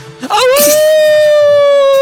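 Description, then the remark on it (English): A man imitates a werewolf howl: one long, sustained wailing note that rises quickly and then holds steady and loud for nearly two seconds, with a rough, breathy start. “I'm actually turning into a wolf”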